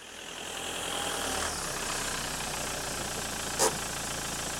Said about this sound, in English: a slightly drunk Steve is parking his car in his parking space in the car park